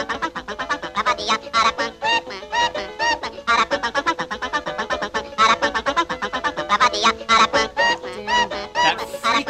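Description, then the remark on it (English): A bird calls over and over in quick, harsh, squawking bursts that fill the whole stretch, with no break and no people talking. “What is that bird's deal? Like, rude?”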